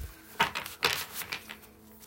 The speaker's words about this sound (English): I will be shuffling the tried and true Tarot Mucha.